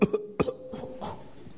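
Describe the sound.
A person imitates a sick goat's cough: two pairs of short, harsh, bleating cough bursts, followed by a softer raspy trailing sound.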